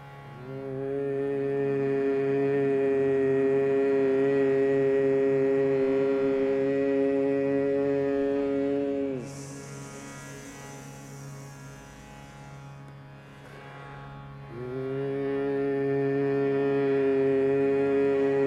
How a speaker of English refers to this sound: And as you chant peace, feel that you're creating that space in your heart for either newness to come in or for you to let go of what's unneeded. Again, we'll start with a slight hum and then into the word peace. Breath in.